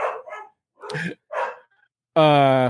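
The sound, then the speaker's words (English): A dog behind the speaker, one of two dogs being babysat, lets out three short, rough barks, pauses, then finishes with a longer, high-pitched howling yelp. No one speaks. “I'm assuming that dog's barking behind me.”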